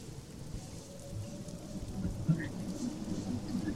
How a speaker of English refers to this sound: I don't like the rain.